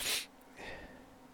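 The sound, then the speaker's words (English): A single sharp sneeze bursts out, followed by a softer breathy exhale and a quiet sniff as it fades. “hold on, I gotta sneeze.”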